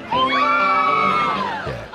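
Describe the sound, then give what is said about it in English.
Several young women let out a long, high-pitched "woo" together, a loud sustained whoop that holds steady for over a second before trailing off, with no other talking. “A woo girl is a type of young woman who, like the cuckoo bird or the whippoorwill, gets her name from the signature sound she makes.”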